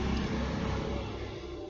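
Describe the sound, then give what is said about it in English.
Steady rumble of passing car traffic outside, a continuous broad road noise with deep low-end drone that holds fairly constant and eases slightly toward the end, with no voices. “I'm pausing because I know that those cars actually are picked up by the Bluetooth.”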